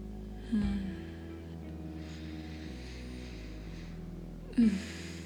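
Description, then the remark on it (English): Deep breathing while stretching: a sharp intake of breath, a long, soft, airy stretch of breath, then another strong breath near the end. No one speaks. “I'm breathing in and out as I give in to the yearning of my body.”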